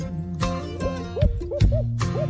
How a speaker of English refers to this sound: Old Tom answering a hoot owl's calling.